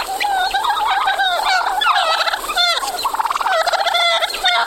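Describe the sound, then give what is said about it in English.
A wild turkey, a large dark bird, gobbles loudly in the woods of Brown County, a rapid bubbling, rattling call rolling on in repeated bursts across several seconds with no one speaking. “It's the wild turkey, a large dark bird with a thin neck, small head, and long legs.”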